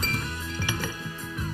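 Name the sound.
glasses clinking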